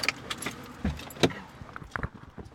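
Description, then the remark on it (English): Keys jingle and a couple of solid thumps, like car doors shutting, mix with rustling and shuffling as several people pile into a car. No one speaks. “We pile into the car, and Trish drives us to Goodwill.”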